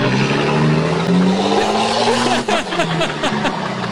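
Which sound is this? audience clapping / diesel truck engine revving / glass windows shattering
diesel truck engine revving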